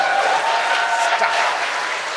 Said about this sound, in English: Thanks for the applause, everybody.